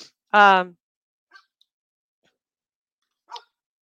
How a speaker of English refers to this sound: She doesn't even usually bark, so it's funny that this happened.